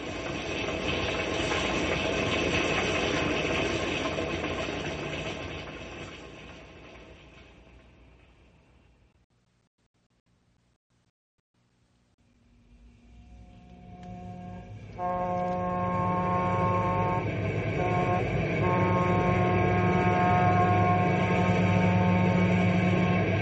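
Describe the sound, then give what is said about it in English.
A passenger train engine rumbles and hisses loudly on the rails, fades almost to silence around the middle, then returns strong with a steady droning tone and rolling mechanical noise. No voices. “Those engines powerful. Not enough to jump across canyons, though.”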